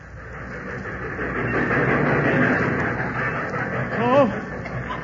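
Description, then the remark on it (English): A train pulls into a station depot with a steady, loud mechanical rumble and rattling cars, swelling then easing slightly, with a brief rising tonal squeal or voice-like sound near the end. “There was a flock of us there, and as the train pulled in...”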